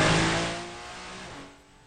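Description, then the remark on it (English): Loud onboard engine of the number 408 Porsche Cayman Clubsport race car roaring, its harmonic drone dipping in pitch and easing off in volume as the driver lifts. No voices. “On board, noises from the 408 of Pedro Marieros, I think, behind the wheel of that Cayman Club Sport”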